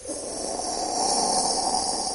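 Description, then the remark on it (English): A voice imitates the Lufkin Industries jet plane, a commercial jet, with a steady, breathy roaring whoosh that swells slightly and holds for about two seconds, hissy and bright, with no words spoken. “No, it's like a jet plane. You can hear it go...”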